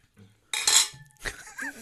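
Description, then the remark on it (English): Donuts are bumped together in a toast, making a bright, clattering clink with a brief ringing tone, then a second, softer knock a moment later. “Can we do it with the donuts? Yeah, are we going to clink donuts?”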